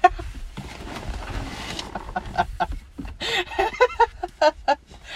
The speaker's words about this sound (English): I can hear peacocks singing, I can hear the leaves rustling